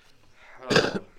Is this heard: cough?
yes